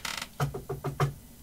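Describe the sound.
A quick series of about five sharp, evenly spaced knocks as a police officer raps a flashlight against a car window in a church parking lot, with no voices.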